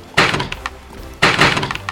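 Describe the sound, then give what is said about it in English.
Two loud, heavy wooden thunks about a second apart, catapult arms slapping forward as catapults fire, launching Cyclops bodies toward a ship, each followed by a brief rattling clatter. No one speaks. “You start hearing the slapping of catapults.”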